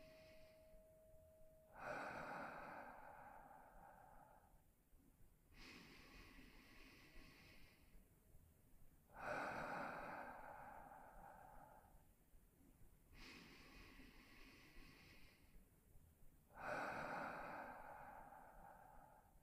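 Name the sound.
slow deep breathing exercise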